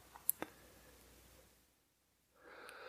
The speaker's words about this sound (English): Oh, God bless me. I sneezed. I think I got some allergies.